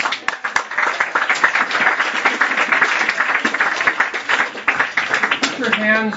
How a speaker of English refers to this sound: Stay right there. Clap if you want to.